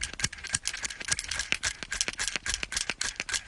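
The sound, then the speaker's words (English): Vise grip pliers being worked, a quick, uneven run of sharp metallic clicks and rattles, a couple dozen in a few seconds, bright and fairly loud, with no talking. “Number two, here's some vice grip action.”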